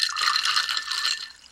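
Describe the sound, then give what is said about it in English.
Tonic water pours steadily into a glass, a continuous fizzy splashing stream with bright bubbly hiss that tapers off slightly at the end. No one speaks. “Here's my pour of the tonic.”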